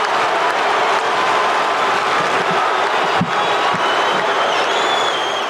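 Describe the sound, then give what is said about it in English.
A Lakers basketball arena crowd roars and cheers in one loud, unbroken wall of noise after Michael Cooper hits an 18-foot shot with 7 seconds left, with applause mixed in and a few shrill whistles rising near the end. “But listen to this crowd on Cooper's heroics.”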